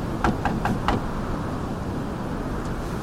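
Four quick, evenly spaced knocks on a locked door ring out over a steady rumbling background noise, followed by silence from the knocking and one faint tap near the end.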